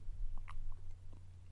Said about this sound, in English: No, I just thought everyone would want to hear that big giant gulp you just took.